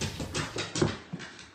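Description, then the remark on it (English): A pit bull makes its way down a flight of stairs, its paws landing in a quick, uneven series of soft thumps and scrabbling clicks, with no talking. “And at first, you're just like, oh, it's just a dog trying to go down the stairs, you know?”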